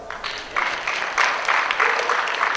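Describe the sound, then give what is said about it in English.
An audience applauds with a dense, steady patter of many hands clapping, fairly loud and sustained throughout. No one speaks over it. “Yeah, you clap for that.”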